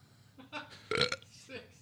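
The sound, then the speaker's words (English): A loud burp rips out for a brief moment, framed by soft breathy vocal noises before and after it. “That's a mouth fart, which is kind of grosser because that's coming from your breath.”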